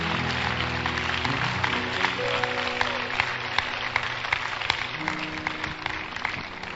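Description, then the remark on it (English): Steady applause from a church audience for about seven seconds, a dense patter of many hands clapping at an even loudness, with sustained keyboard-like tones held underneath. “Please clap for my two souls.”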